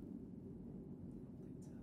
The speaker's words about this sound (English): This plane above me is supremely loud right now, and I'm trying to ignore it, but I can't think until it passes. Is that a helicopter?